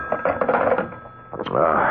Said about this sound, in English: What? Oh, it's a phone.